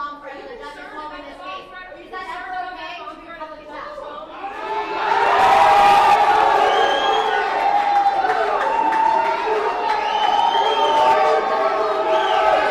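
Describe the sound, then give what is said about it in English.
A crowd's murmur and voices swell suddenly into loud, sustained cheering and applause, with whoops and shouts that keep going at a steady, roaring level. “Like, they erupted into applause and stuff.”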